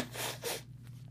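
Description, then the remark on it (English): A nose being blown in two quick, breathy bursts: a longer rough gust followed by a shorter one, then a faint low hum lingers with no talking. “Sorry, can I blow my nose?”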